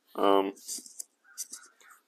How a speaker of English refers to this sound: Of course, birds are going today.